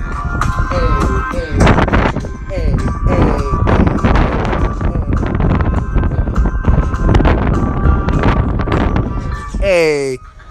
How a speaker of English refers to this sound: If y'all hear a lot of wind, it's really windy out here tonight. It was such a beautiful day, but now the wind is starting with its BS. I'm out here on my balcony in Virginia, across from the plantation.